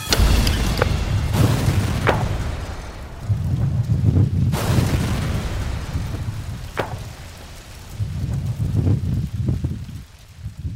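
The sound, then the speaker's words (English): A car bomb explosion from a reconstructed device set off in a test: loud, deep rumbling blasts with several sharp cracks. The roar swells and fades in waves over ten seconds, with wind buffeting the microphone and no voices. “This is all pieces from this last blast.”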